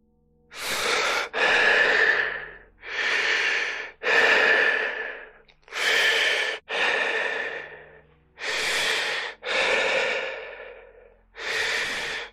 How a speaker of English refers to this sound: He started breathing anxiously.